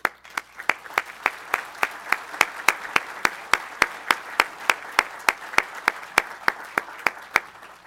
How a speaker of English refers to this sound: And I would ask them to stand and receive a round of applause.